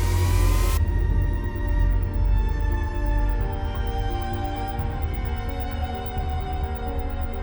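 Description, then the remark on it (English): A short bright whoosh gives way to a spaceship's engines humming to life just after its hatch seals shut, a loud, steady low rumble with tonal layers that swell slightly and keep droning for several seconds. “As the engines hummed to life, Asala Siku followed the sound of laughter and walked into her future.”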